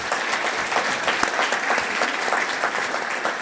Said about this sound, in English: Maybe give her a round of applause as well.